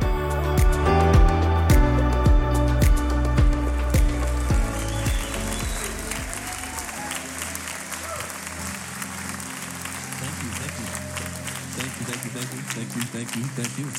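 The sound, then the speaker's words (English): A church audience at Capital Church in Idaho breaks into sustained, dense applause as the closing chords of music fade out in the first few seconds, the clapping continuing steadily and fairly loud to the end. “Come on, give God a good hand clap this morning, church.”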